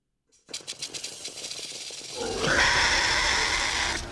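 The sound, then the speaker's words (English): A dinosaur call made by combining the calls of a swan, a hawk and a howler monkey with a rattlesnake's rattle: a rapid, buzzing rattle of clicks gives way to a loud, harsh, rasping shriek that holds for a couple of seconds, with no talking. “So that sound was made by combining the calls of a swan and a hawk, a rattlesnake, you know, rattle to make the sound totally.”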